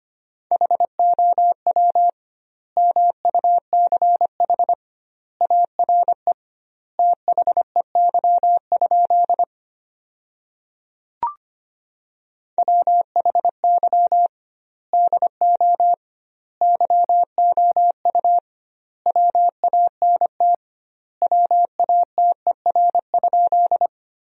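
Morse code at 25 words per minute with doubled word spacing, sending sentences built from the 200 most common words: a steady mid-pitched beep keyed into rapid dots and dashes, sent in clustered bursts separated by short silences, with no voices.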